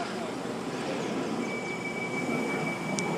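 A train rushing past at speed on the Metropolitan line fast line through a station, a loud, steady roar of wheels and air with a thin high-pitched whine running through it for a few seconds.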